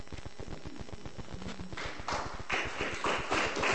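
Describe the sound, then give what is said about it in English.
An audience applauds for Sylvia Plath, many hands clapping in a dense, irregular patter that starts fairly soft and swells louder and fuller over the last couple of seconds. “Oh, we clap for Sylvia Plath, because she's great.”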